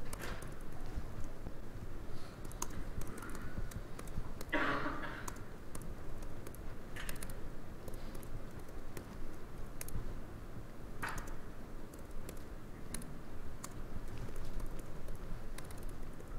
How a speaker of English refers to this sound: Ah, my typing is so bad. This is what happens.